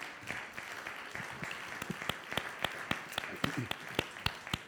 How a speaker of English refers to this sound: Go ahead and clap. That's good.